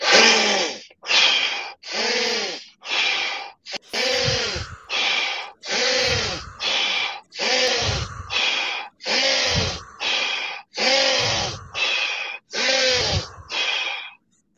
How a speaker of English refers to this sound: we're gonna go 15 seconds of in through the nose, out through the mouth, as hard as you can